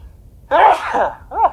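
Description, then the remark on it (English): A single loud sneeze bursts out abruptly from a person reading scripture aloud, followed by a brief trailing vocal sound, with no speech around it. “Had to sneeze.”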